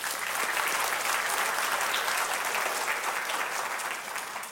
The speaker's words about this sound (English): Let's give her some applause.